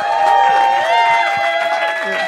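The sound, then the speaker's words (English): An audience applauds and cheers loudly and steadily throughout as team two and team captain Stuart Laws are welcomed, with dense clapping and held, bright tones ringing over the crowd noise. “Please, everyone, put your hands together.”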